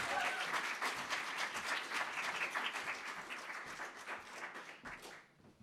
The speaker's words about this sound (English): big round of applause